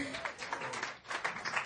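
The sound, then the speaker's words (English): A crowd claps together in a fairly soft, steady patter of many overlapping hand claps that carries on without a break for the whole moment. “You guys should clap for this.”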